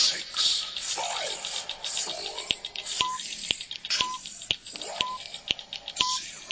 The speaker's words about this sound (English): All right, and that's the timer.